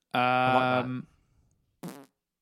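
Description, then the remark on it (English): A loud, buzzy raspberry blown with the lips, imitating a fart, lasting under a second, followed after a pause by a shorter second burst. Clear, with no talking. “That sounded like a fart. that wasn't a genuine fart.”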